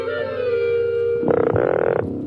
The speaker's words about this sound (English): Yeah, see, it's just normal ass frog.